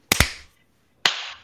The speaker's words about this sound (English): Sorry, I didn't know we were going to clap, so it was way late.